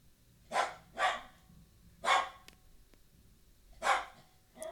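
A Rottweiler attacking a live chicken barks in short, forceful bursts: a quick double bark, then single barks spaced a second or two apart, with no talking.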